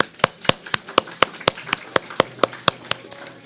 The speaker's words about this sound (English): And a round of applause, perhaps.